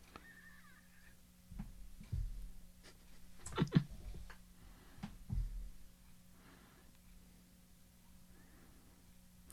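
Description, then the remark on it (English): A pixelated digital parrot named Polly squawks in about three short, harsh bursts, spaced a second or two apart. The squawks sound crunchy and electronic over a faint low hum, fairly soft overall. “Squawk, Polly made of pixels.”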